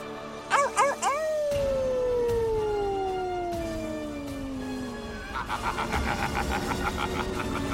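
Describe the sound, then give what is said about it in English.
A few quick rising yelps lead into a long, drawn-out wolf howl that slowly glides downward in pitch, followed by a burst of choppy, pulsing noise at the end. “The Wolf.”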